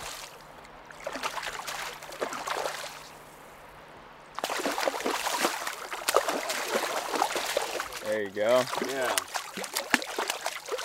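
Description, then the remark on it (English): Steady rushing of flowing river water at a river mouth fills the scene, a continuous wash that grows louder partway through, with a couple of people speaking briefly over it. “There's seals that sit out off of this the river mouth here.”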